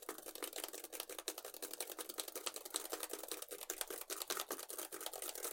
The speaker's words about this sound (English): Okay. Just typing in your email. Any second.